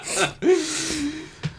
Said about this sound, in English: … said, gasping for air